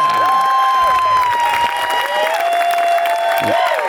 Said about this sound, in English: Hey, I like you too. That's awesome. Yeah, that's the best applause I've ever gotten. That's great.